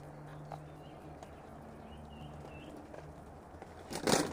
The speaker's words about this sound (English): Enjoying that bird song.